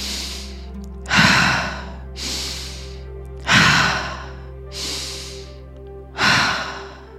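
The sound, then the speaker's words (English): Slow, deep breaths, loud rushing inhales alternating with softer airy exhales in a steady rhythm, about three full cycles with no talking. “Keep breathing. Keep going.”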